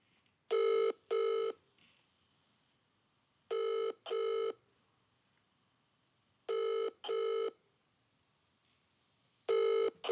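An outgoing phone call to a friend goes unanswered: the ringback tone repeats in double bursts, two short rings then a pause of about two seconds, cycling four times. The tone is clear and steady with no voices over it.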